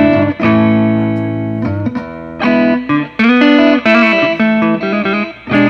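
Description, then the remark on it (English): A clean electric guitar plays alone, strumming sustained chords with a touch of grit and a wash of spring reverb, the notes ringing out between short pauses. “So even your clean tone has a little hair on it. You got a lot of reverb going on.”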